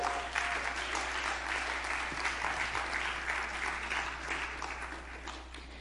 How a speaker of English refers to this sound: Give God a strong hand clap for that.